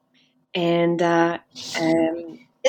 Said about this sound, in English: Excuse me, I just sneezed.